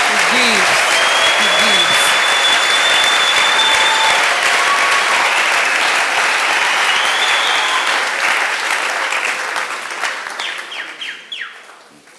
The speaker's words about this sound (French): Applaudissez pour le Seigneur. Clap for the Lord.